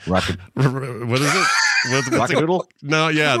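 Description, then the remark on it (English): A person imitates a rooster crowing, as the rooster from the animated film Rock-a-Doodle: a few loud, strained vocal bursts swelling into a long, drawn-out cry, with no other sounds around it. “to be the rooster from the animated...”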